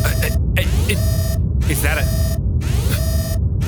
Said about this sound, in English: is that an alarm, sir? What do we do?